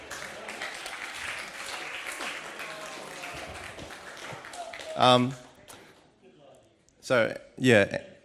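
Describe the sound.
A crowd applauds with a dense, steady patter of many hands for about five seconds, then the clapping dies away and a man's voice speaks in short bursts.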